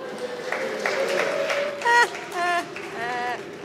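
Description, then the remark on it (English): An audience at the in-person annual 25-hour marathon reading of Herman Melville's classic claps in scattered, uneven bursts while voices let out rising whoops and cheers, all over a steady low hum. “Some of the diehards were like, wait a minute, people aren't supposed to be clapping.”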